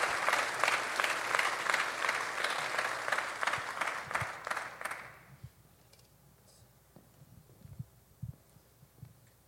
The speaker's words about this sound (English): So we guys clap your hands as he makes his way to the stage.